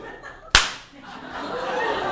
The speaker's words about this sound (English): Hey, slap him in the face.